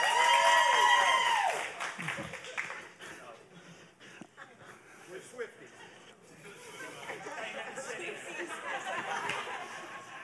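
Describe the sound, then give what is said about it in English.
An audience claps and cheers to vote between choices such as San Francisco or Kansas City, starting loud with some whoops, then thinning into scattered clapping, chatter and laughter before swelling again toward the end. “I say both items, I'll say the same set of items a second time, and then you can give a round of applause for it's either this or that.”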